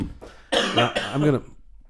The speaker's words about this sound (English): I'm going to try and do this because my kid also gave me somewhat of a cold and I'm on the coughing stage.